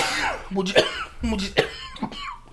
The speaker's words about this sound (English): Here comes the incessant cough.